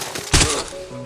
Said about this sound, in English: His aching arms lift the pipe above his head, and gravity does most of the work for the first blow. The pipe smashes into Zaz's face, breaking his nose and flattening his face.